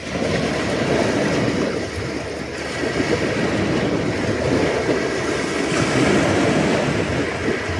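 Steady, full-bodied wash of waves rolling in on the land of the Comox First Nation in the morning, a continuous broad roar with gentle surges rising and easing throughout, no voices.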